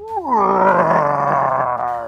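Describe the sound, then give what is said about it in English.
A monster's roar begins with a rising, pitch-sliding cry and swells into a loud, sustained, throaty bellow lasting about two seconds. It is forceful, with no talking over it. “The bastard roars.”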